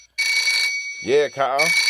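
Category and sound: household object, phone ringing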